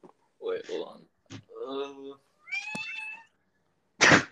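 A cat meows several times, each call drawn out and wavering, separated by short pauses, ending with a brief, noisy burst.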